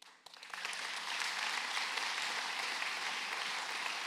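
An audience breaks into sustained applause, dense clapping swelling within the first half second and holding steady and loud to the end, with no voices cutting through.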